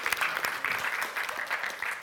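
An audience applauds together, a dense steady patter of many hands clapping at moderate volume for a couple of seconds, with no one speaking over it.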